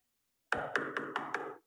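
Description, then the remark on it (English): A door-knock sound effect: five quick, evenly spaced knocks on a door, loud, each ringing slightly into the next before the sequence stops abruptly. No voices. “Who's at the door?”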